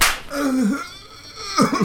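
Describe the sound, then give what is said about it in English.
A man slaps someone: a sharp slap cracks at the very start, followed by short strained vocal sounds and a brief burst of voice near the end. “And he slaps”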